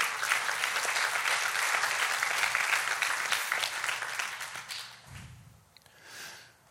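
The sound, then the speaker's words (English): A crowd claps steadily in a dense burst of applause for about five seconds, then it thins out and fades, leaving a few scattered claps and a low murmur. “You can clap for that.”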